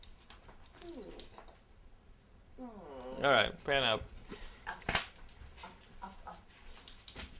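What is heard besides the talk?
dog whimpering and panting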